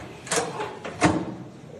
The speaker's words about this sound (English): That's a big, heavy door. And she's doing it all by herself.